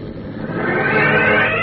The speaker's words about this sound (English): Waiting until Harry Niles had disappeared among the trees, the dapper Dr. Tobin returns to the ambulance, slides in behind the wheel, then steps on the starter and pulls away.